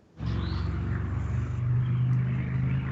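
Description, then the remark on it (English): A Harley motorcycle engine rumbles loudly with a deep, throbbing low drone that holds steady and swells slightly as it passes, with no one speaking. “That's a Harley.”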